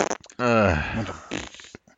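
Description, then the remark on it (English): A voice blows a loud, buzzing raspberry imitating a fart, a sustained sputter of about a second that trails off into a rougher, breathy flutter, with brief clicks before and after. “And then you're just hearing farts.”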